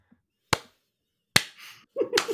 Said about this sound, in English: Nice clap.